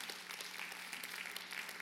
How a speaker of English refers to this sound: Can I just get a like amen hand clap right there?